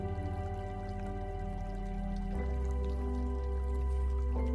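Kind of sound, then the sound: nature, river water flowing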